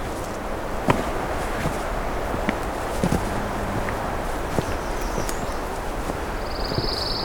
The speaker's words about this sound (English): There we go. A pine warbler on the right.